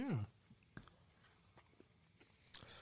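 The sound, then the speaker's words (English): Someone chews a crunchy chocolate bar with a savory chicken bouillon and maple syrup flavor: a brief vocal murmur, then a handful of soft, crisp crunches spaced irregularly over a quiet background. “Ooh, it's like crunchy.”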